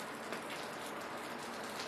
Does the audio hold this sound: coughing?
no